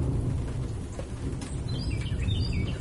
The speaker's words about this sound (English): Thunder didn't do the trick, huh? Unfreaking believable.